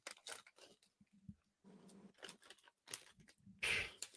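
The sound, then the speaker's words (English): Paper crinkles and rustles as a paper-wrapped space food package is unwrapped, in a series of short, uneven bursts with brief pauses, ending in a louder tearing crackle. “Oh, it's actually, it's wrapped up in like some kind of paper.”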